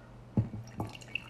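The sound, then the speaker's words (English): Freshly brewed coffee drips and splashes into a mug in a few quick, uneven plops, fairly quiet, with a faint hum underneath and no voices. “This is actual live coffee pouring.”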